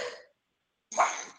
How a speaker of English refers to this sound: Excuse me. And I don't sneeze either